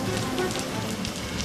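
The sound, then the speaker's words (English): Steady rain pours down in Sydney, Australia, in a dense, continuous hiss with scattered patter of drops hitting a surface, even in loudness, with no voices. “And in all those 164 years, it has never been this wet, not even close.”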